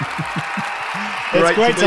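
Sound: crowd applause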